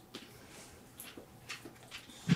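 A dog gives a handful of short, quiet barks spread irregularly across a couple of seconds, ending with one sharper, louder bark. No one speaks.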